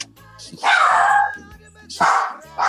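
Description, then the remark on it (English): A dog named Stella barks loudly, a few sharp, harsh barks in quick bursts, with a person's low voice murmuring underneath. “Stella the dog agrees.”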